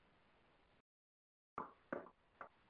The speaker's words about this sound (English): You hear that knock? It's a special knock. Only those in the know will understand its meaning. Without that knock, you will not get in.